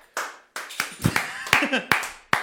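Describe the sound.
A short round of applause for a $5 prize winner: sharp, irregular hand claps, each ringing out briefly, with a voice or two audible underneath the clapping.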